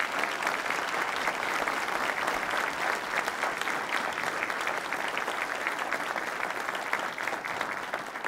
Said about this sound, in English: Will you please join me in giving a round of applause to our panelists?